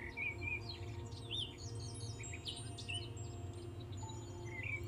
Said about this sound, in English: And notice if you hear any bird song or creatures stirring around you.